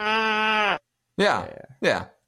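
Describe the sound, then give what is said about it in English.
A person imitates a sheep bleating: one long, steady baa followed by two shorter, quavering bleats, fairly loud with brief pauses between them. “Yeah, that's probably what a realistic sheep sounds like.”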